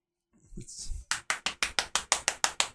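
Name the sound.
hand clapping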